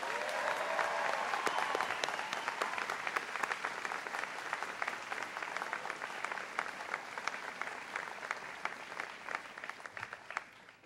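A large crowd applauds steadily for about ten seconds, dense overlapping claps filling a big room, holding a fairly even level before gradually thinning toward the end.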